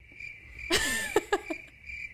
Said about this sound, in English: Awkward silence. Always the crickets.